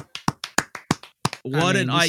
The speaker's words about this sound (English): Round of applause. Yeah. Clap it.